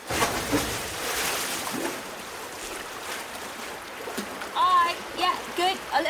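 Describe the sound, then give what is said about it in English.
Rushing, splashy water churns steadily for several seconds as people enter the water, then excited voices and high-pitched shouts rise over the continuing splashing toward the end. “Okay, Strawberry Band, into the water.”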